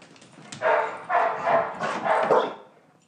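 animal, dog barking

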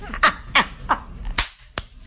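human body sound, hand clapping

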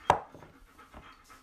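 animal, dog panting

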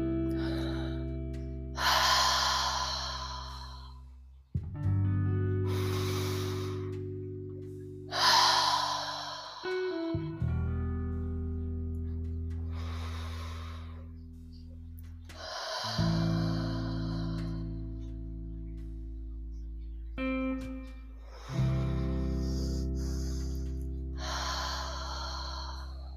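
human body sound, hard

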